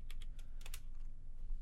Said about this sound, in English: Oh, yeah. I'm still not the greatest at typing and talking at the same time.